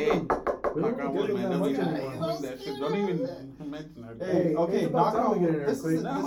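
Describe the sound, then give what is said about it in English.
A quick run of five or six sharp knocks on wood at the start, fairly loud, with people talking over them and continuing afterward. “Knock on wood, but is it true?”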